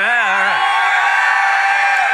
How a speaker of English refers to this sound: You guys are fired up today. This is fun. Must be that yelling. We should do that one more time. You guys want to yell one more time?